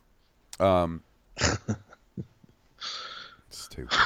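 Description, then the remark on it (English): A very loud, hard sneeze bursts out, surrounded by gasps, heavy breaths and a strained voiced exclamation. “Whew, I'm gonna blow a kidney out my back sneezing that hard.”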